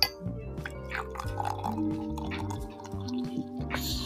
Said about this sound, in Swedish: Åh, oh, det droppar! Vi försöker ha lite ASMR lugnt för våra tittare och allt man hör jävla ni, så här, i den lugna stunden. Åh, jävlar, det droppar! Förlåt för alla som hade hörlurar.